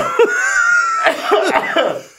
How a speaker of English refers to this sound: Just talking about drugs has made me cough up.